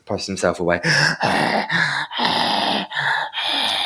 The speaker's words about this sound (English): Oh, yeah, just as he's doing his heavy breathing.